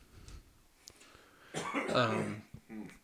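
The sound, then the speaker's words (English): A raspy bout of coughing and throat clearing from a lingering cough, one longer harsh burst followed by a shorter rough clear, with quiet breathing before it and no talking. “Still trying to kick that cough, but.”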